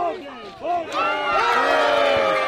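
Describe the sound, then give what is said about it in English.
A crowd at a basketball game erupts in cheers as a player sinks a layup with 9 seconds left in a game tied 37-37, with many overlapping shouts and high whoops swelling and holding loud and steady throughout. “And before the crowd gets a chance to celebrate, D's teammate gets possession of the ball and throws another one in.”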